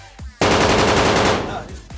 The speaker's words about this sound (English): They will pop shots at the car.